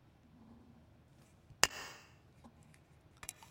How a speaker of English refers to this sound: Well, I will say that the reverb definitely helped that, because we don't have many drinks here on the show that get opened with a plastic breakaway bottle top. Congratulations to them for keeping up with the times.